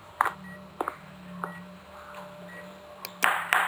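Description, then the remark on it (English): A heart monitor beeps softly at a steady pace, about once a second, with short high-pitched tones over a low hum, while sharp knocks and clacks break in irregularly. “The bass is a heart monitor and the hammer is a heart.”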